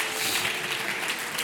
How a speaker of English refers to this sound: Oh, clap your hands again and praise him. Praise the name of the Lord.